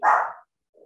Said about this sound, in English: We'll pause for a second. Someone is daring to walk by the front of my house and my 9-pound dog is quite upset by that.